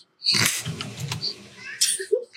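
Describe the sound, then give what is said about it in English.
A cat meows in a couple of short, rough bursts, with a brief pause between them, fairly loud against a quiet background. “Fucking idiot cat.”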